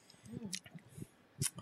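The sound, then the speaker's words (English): Chewing on crunchy peanut brittle, with two crisp crackling bites standing out among softer wet mouth sounds and faint murmuring. “is numbing some delectable peanut brittle.”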